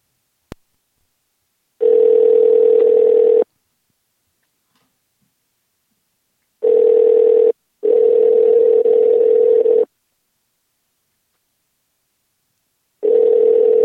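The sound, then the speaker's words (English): A telephone ringback tone sounds in steady bursts separated by silent gaps, clear and fairly loud, a steady electronic purr repeating four times with no voices. “Well, they can hear the ringing.”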